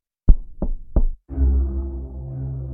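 Three firm, evenly spaced, solid knocks on a door as guests arrive at a dinner gathering, followed by a low, steady droning rumble that carries on to the end.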